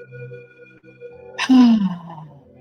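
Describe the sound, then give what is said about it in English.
A single deliberate, audible exhale at the start of a guided breathing exercise, breathy and slightly voiced like a sigh, rises over a faint, steady musical drone and trails off; no clear inhale follows. “Let's begin just with an audible exhale to just get it out, and then we will go with a deep breath in.”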